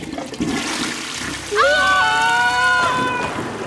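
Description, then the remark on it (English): Deep, dank water churns and sloshes loudly as it is fallen into from a great height, surging halfway through into a heavy rush with a hollow, whining tone riding on top before it settles back into a low slosh. No one speaks. “Crystal and Wronghalf emerged from the stank-ass, dank-ass water they had just been deposited into.”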